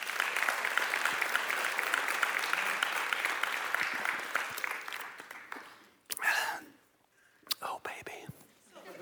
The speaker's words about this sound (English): Thanks for clapping so I could have a drink.